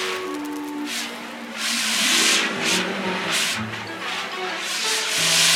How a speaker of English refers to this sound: And of course, Jake's fire extinguisher.